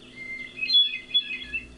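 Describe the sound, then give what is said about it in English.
A hermit thrush sings a short, fluting phrase of clear, ringing notes that waver and shimmer at a high pitch, heard alone with a faint low rumble beneath. “And that rule extends to when two male hermit thrushes are singing near each other.”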